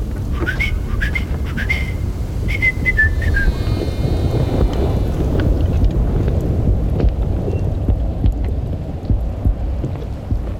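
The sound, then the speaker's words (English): Three short, shrill whistles sound in the first few seconds over a steady, heavy roar of wind and sea, then only the blustery rumble continues. “The game is done, I've won, quoth she, and whistles thrice.”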